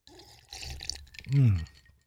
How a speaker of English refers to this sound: Let me take a drink of this non-sugar water.